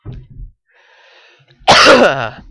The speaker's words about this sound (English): Damn, this cough.